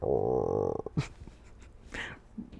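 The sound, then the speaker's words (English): Someone vocally imitates a growling stomach with a loud, low, wavering hum that lasts nearly a second, followed by a few soft, breathy huffs and rustles. “When Mommy and I did a podcast, both of our stomachs were growling the whole time. So it sounded like this.”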